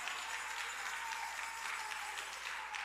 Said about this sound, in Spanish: Si usted cree que es así, denle un fuerte aplauso al Señor con el corazón.